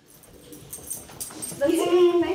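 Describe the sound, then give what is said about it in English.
A small dog named Muffin whimpers with a thin, rising whine that swells louder toward the end, with a few soft scuffling sounds in the background, in a little house on a hill in northwestern Oregon. “We're in a little house on a hill in northwestern Oregon on a comfy couch with throw pillows, a little dog named Muffin running around.”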